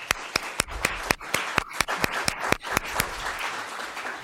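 An audience applauds a presenter in a steady rhythm of sharp, evenly spaced claps over a bed of softer scattered clapping. The beat holds for about three seconds, then dissolves into a looser patter as it fades.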